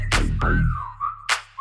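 A high whistle tone slides and wavers over a heavy bass beat, punctuated by sharp percussive snaps; no one speaks.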